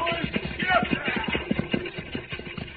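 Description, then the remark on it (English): Horses pulling the stagecoach to Brimstone gallop hard at high speed, their hooves pounding in a rapid, rolling rhythm of loud thuds with a faint rattle mixed in. “Those horses are at a high gallop.”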